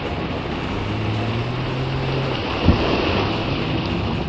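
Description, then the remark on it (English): A boat's engine drones steadily as the boat approaches a dock over a constant wash of waves and water, a low motor hum running beneath, with one brief knock partway through and no voices. “Captain Scotty B is approaching the dock now in his boat.”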